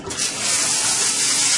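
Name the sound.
water running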